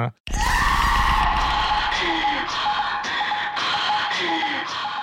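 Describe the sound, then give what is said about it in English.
A raw, guttural scream bursts in after a split second of silence and holds, loud and strained, over a dense wash of distorted instruments at the very start of an album. “I love how the very top of the album is them sort of just giving this guttural scream.”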